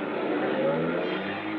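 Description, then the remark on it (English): An old-model car engine rumbles steadily with a broad, rough motor noise as the car drives away and disappears around a bend, holding at a fairly constant, moderate loudness for the short stretch, with no voices present. “I caught the last three numbers on the license plate before it disappeared around a bend.”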